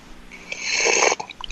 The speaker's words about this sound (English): That was me sipping the tears of my enemies out of a martini glass.